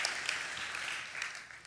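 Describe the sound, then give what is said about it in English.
An audience claps together in a steady, dense patter of many hands. The clapping is fairly soft and continues evenly for a couple of seconds with no voices. “Come on, somebody clap for that one.”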